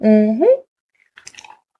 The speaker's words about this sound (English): Oops, excuse me, I got a drip. Just a little tiny one. I'll finish this sip too.